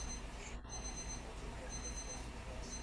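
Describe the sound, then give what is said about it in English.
A timer alarm going off in a steady series of high-pitched electronic beeps, fairly quiet and repeating over a low background hum. “Timer's going off. Timer's going off!”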